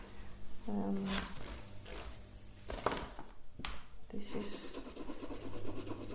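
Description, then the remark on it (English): Graphite pencils, 12B and 6B, scratch lines across paper in a series of uneven strokes, soft raspy sweeps with brief pauses between lines, while a voice murmurs quietly now and then. “I have 12B and 6B. So now we have pencils.”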